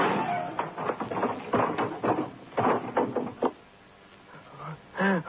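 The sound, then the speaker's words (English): A wooden door at the head of the steps, in the room of Sylvia Douglas, bangs open, then a rapid flurry of heavy footsteps thuds down the stairs as the scarred man Peter Terrell rushes down in terror, before fading out, with a short vocal cry at the very end. “It came from the door, flung open at the head of the steps, in the room of Sylvia Douglas.”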